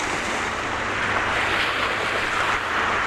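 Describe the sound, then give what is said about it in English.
Steady roar of surf washing onto a beach, a broad continuous hiss of breaking water that swells slightly midway, with some wind rumble underneath and no voices. “Actually go down on the beach.”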